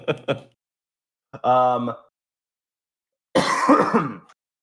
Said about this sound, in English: Also, I don't have my push to mute set up for OBS. So yeah, this is all my coughs and vapes are coming straight in on the stream. So you guys should be used to that.